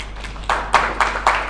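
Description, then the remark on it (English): A short run of hand claps, about five sharp, evenly spaced slaps at a brisk, steady pace, moderately loud over a soft background hiss with no talking. “I thought that was at least worth a clap.”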